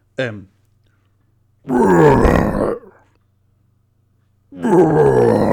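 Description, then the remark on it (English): A man does a vocal impression of a grumpy lion: a short grunt followed by two long, loud, rasping growl-roars with pauses between them, no words spoken. “He sounds like a grumpy lion on a bench.”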